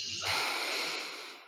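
A deep, drawn-out inhale during a guided breathing exercise, a steady rush of airy breath pulled in for over a second, with no talking.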